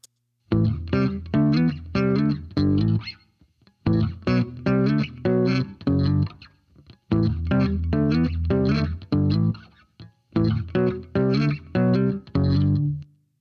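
A bass guitar plays a steady, funky riff of a slow song at 74 beats per minute, with the popping of the slap technique left out, in four repeating phrases with brief pauses between them. The notes are loud, rhythmic and mostly low-pitched.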